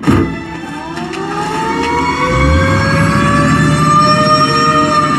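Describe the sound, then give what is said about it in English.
An ambulance siren wails loudly and steadily, its tone sliding slowly upward, with a low engine rumble beneath and a brief thud near the start. “Get an ambulance. Now!”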